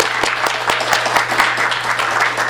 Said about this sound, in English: So let's give him a very warm round of applause for Stephen Greco.